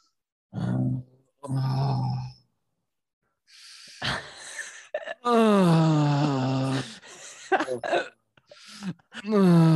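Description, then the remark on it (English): A man's voice imitates how another man breathed in a sauna: heavy, drawn-out moaning breaths, a few short huffs followed by long, loud groaning exhales, with a rising and falling pitch between them. “You should have heard the way Robbie was breathing in the sauna. It sounded like he was fucking behind me.”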